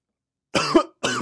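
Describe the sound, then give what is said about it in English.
Two harsh, raspy coughs from a person who has just choked on a drink, the first longer and strained, the second starting abruptly after a short pause, with no talking around them. “I just totally freaking choked on my drink”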